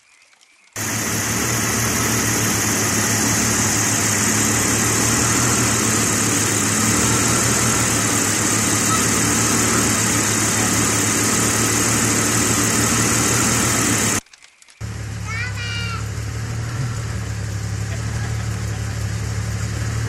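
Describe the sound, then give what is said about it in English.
A rebuilt car engine starts for the first time at a shop, catching and settling into a loud, steady idle, its rumble and whine holding even, with a brief cut before the idling carries on. No one speaks. “we had the other engine ready, and here's a little video of the first start.”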